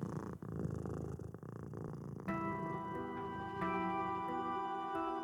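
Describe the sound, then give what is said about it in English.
A cat purrs deep in the recesses of an attic in a steady, rumbling rhythm; about two seconds in, a sustained tonal, music-like drone takes over and continues to the end. “As she dozed off, she thought she heard a familiar purring sound deep in the recesses of the attic.”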